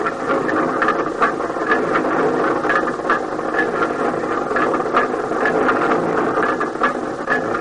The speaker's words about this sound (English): And soon the sound of our rotary drill broke the deadly silence of the Bayou Choux Peak.